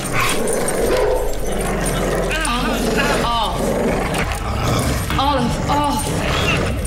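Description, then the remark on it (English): A dog snarls and barks in several short, loud bursts while mauling a man by the arm, over a dense, rumbling background, with growling and yelping sounds spread through the scene. “And then he's mildly bothered by being mauled by a dog.”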